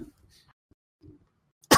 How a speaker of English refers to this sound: I immediately start coughing.